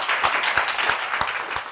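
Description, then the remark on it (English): Steady audience applause at a London Review Bookshop event, a dense wash of many hands clapping at an even, sustained level with a few sharper individual claps standing out, and no voices over it. “Another round of applause, I think.”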